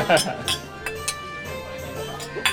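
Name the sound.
glasses clinking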